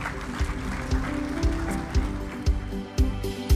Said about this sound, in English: Come on, give the Lord a big hand clap today, everybody.